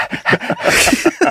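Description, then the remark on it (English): A person imitates a dog panting: quick, rhythmic breathy huffs, about six in a row, fairly loud, with a slight voiced edge on each breath. “This is dog.”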